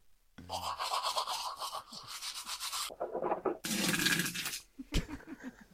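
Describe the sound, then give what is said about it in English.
Toothbrush scrubbing, brisk bristly strokes in a few bursts separated by short pauses, with a light knock near the end. No voices. “So who's actually been using my toothbrush?”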